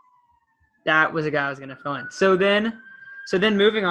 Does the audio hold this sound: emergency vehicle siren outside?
yes